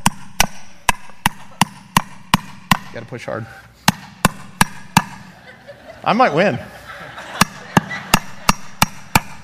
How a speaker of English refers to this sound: So I've got nails, and I'm going to start hammering my cross. Just two should be fine.